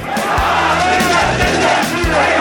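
A large crowd of thousands of mourners at a funeral procession in Baghdad for Iranian General Qasem Soleimani shouts "Death to America" together in loud, rhythmic bursts, many voices chanting in unison with a steady, driving cadence and no single speaker standing out.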